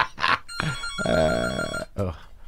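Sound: telephone ringing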